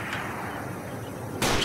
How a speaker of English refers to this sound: Additional shots, probably directed at the cruisers, filled the air.